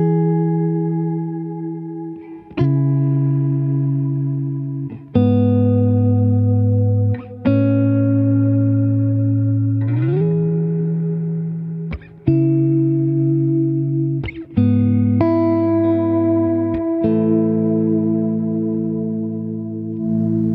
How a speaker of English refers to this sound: And then the bloom verb is also really fun to use. So it kind of makes everything, gives a different, this one I have the EQ set to be a little bit darker. So the bloom verb responds a little bit differently if I'm going.